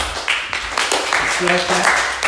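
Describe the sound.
A small group claps steadily for a couple of seconds, sharp overlapping hand claps forming a busy patter, with a brief voice rising underneath partway through.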